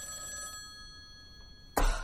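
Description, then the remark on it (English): A telephone bell rings with a steady metallic trill, fades, then after a pause a louder burst of ringing starts abruptly near the end. “That is my telephone ringing, isn't it?”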